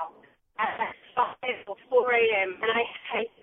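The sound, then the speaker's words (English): A caller's voice comes through a narrow, tinny phone line, choppy and garbled as the connection breaks up, with bursts of speech cutting in and out. “Oh, we're having trouble with your phone. Yeah. Oh, we can't hear you properly.”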